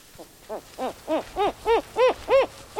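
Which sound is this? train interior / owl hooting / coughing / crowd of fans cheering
owl hooting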